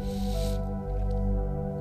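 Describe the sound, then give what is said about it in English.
A voice imitates a deer panting with one breathy, hissing exhale at the start, fairly loud, over steady sustained musical tones that continue after the breath stops. “And it pants, and it pants, and it pants.”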